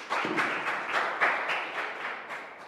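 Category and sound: crowd, audience applause and clapping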